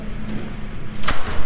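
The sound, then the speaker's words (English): A heavy, grand cathedral door swings open with a single short, loud clunk and a faint high whine, set against a steady low background rumble. No one speaks. “Right, now these lovely grand doors”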